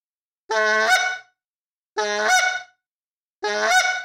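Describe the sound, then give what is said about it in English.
Three loud honks blown on a goose call, each a reedy, harmonic blast about half a second long, evenly spaced with short silences between and no talking; each honk is made by pushing the tongue hard to the roof of the mouth to cut off the airflow, rolling the note over into a cluck. “And when it cuts the airflow off, it rolls it over into a cluck. Okay. Right? And that gives you your honk.”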